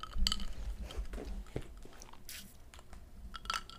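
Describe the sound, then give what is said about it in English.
Someone sips coffee from a mug: soft wet mouth sounds and swallowing, with a few sharp clicks and taps scattered throughout, no talking. “Let me grab a sip of coffee before I segue into the next part here.”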